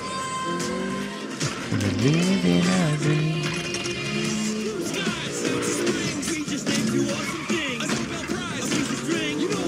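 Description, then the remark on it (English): Racing car engines in a video game trailer featuring Lego cars and real cars roar and whine steadily throughout, their pitch sweeping up and down as they rev and pass, set against a dense, busy mix of other sound. Nobody speaks. “Because there's like a mix of the Lego cards and the real cars. And the real cars are out there on Lego Track 2.”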